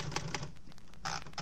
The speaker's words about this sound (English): I took a quick look around Johnson's office. It was a typewriter, and I tried it.